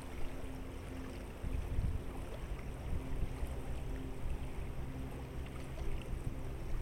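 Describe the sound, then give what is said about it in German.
Gentle waves lap softly and continuously onto the beach of a lake bay, a steady low wash of water with a faint underlying hum and no voices, while wind blows across the bay. “Die Wellen laufen sanft an den Strand und der über die Bucht wehende Wind kühlt dein Gesicht.”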